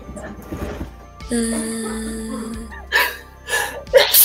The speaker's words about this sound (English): Bless you! Bless you!